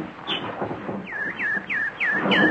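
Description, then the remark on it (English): A nightingale sings a run of five bright, descending whistled notes in a steady, even rhythm, each sweep sliding down in pitch, over a low murmur of background noise. “Hello, pretty nightingale. Don't you want any food? No? You just want to sing.”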